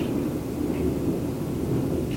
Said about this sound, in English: We're hearing some thunder. Is that thunder? I'm not sure.